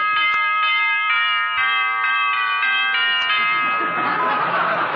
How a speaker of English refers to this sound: Well, you really fixed that doorbell, didn't you, dearie?